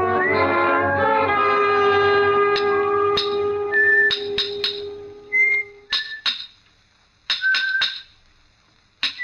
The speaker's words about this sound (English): From the yard itself came a cheery whistle, a noise of hammer blows, and the cold sound of steel meeting stone.